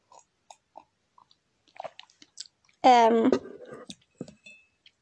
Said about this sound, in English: Sorry, let me just take a sip of my tea.